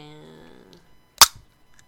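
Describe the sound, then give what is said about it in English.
A can of creamy melon soda pops open with one sharp, loud crack, followed by a brief fizzing tail, after a faint fading hum and otherwise quiet surroundings. “Alright, well let's pop this open.”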